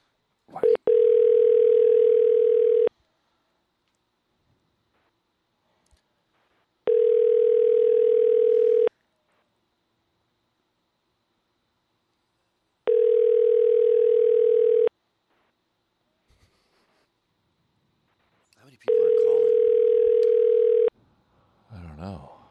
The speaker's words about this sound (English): There's probably not many people working. It's ringing on a guy's cell phone.